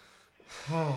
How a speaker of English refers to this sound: Why the hell did everybody just gasp?